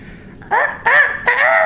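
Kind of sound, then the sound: vocal imitation, rooster crowing imitation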